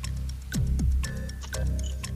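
A ticking 10-second countdown clock in a quiz game, with sharp, steady ticks about twice a second over a low droning musical bed with falling tones. No one speaks.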